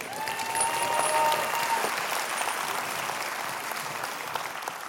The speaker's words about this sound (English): We should give him a round of applause.